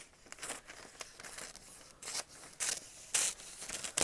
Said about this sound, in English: And of course, I cannot cut the paper straight. I hope people don't really care what their paper looks like.